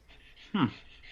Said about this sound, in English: I can hear your dog panting. I'll hear about it. Oh yeah, he's freaking out right now.